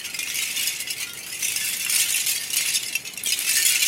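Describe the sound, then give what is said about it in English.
Beer cans covering a house clink and rattle together in the wind in a steady, busy metallic jangle, bright and high-pitched like wind chimes, with no pauses and no voices. “I imagine, you know, the beer cans just singing in the wind on windy days and making those sort of wind chime sounds, they do get pretty noisy.”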